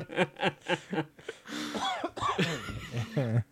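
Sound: man coughing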